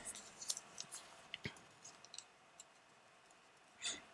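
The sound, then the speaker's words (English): Soft crinkling and small crackles as a slip of paper drawn from a pumpkin is unfolded, with a few scattered rustles and a brief swishing sound near the end; no one speaks. “paper open. Here we go.”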